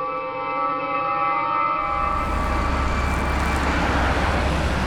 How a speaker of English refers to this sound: From the streets of New York City, there's cars everywhere. You know, I'm here on 127th and Park Avenue. It's a beautiful city, but this time of day, everyone's trying to get to work. There are just cars all over the place